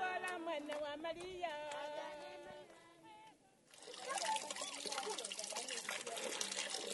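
Voices at first, then a steady rush of trickling water takes over for the last few seconds, fairly loud, a continuous splashing flow with no break.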